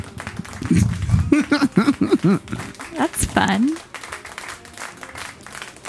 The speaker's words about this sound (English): Nice. I've been paying attention. Wow. I think that's worth the small group clap.